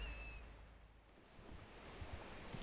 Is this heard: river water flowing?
yes